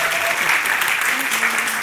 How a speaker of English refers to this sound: And one last round of applause for all our poets and our judge. Thank you very much.